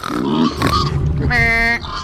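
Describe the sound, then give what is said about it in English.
Two pigs oink and grunt in a quick, busy burst of snorts as they are led into a room, ending in a higher, drawn-out squeal-like oink, loud and continuous for about two seconds. “And you two pigs this way.”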